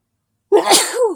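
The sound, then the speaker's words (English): A single sharp sneeze, caused by smoke, bursts out of silence, loud, with a breathy hiss and a short voiced tail trailing off at the end. “Oh, smoke is making me sneeze too.”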